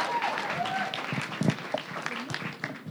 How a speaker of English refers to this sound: Clap it up one more time, please.